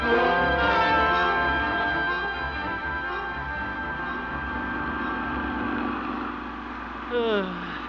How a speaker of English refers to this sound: What's that? Old man Walker and his tractor up there, taking up the whole street.